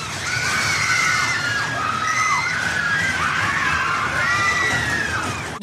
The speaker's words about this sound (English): Well, that sounds like a roller coaster ride, doesn't it? These screams?